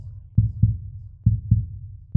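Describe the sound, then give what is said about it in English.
A slow, steady human heartbeat thuds in deep, muffled lub-dub pairs, heavy, with a low hum between beats and no voices; the heartbeats of people walking into the woods. “Now we were accompanied only by silence, the putrid odor of death, and the sound of our own heartbeats.”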